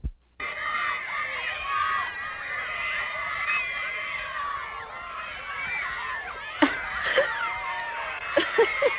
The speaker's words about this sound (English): That's an actual recording. That's an actual, it does sound like seagulls. That's an actual recording of girls screaming at the ….